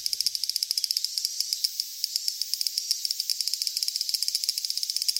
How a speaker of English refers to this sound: For example, here's a Japanese large brown cicada, or aburazemi. And here he is again, this time running out of steam, so you can actually hear the individual clicks.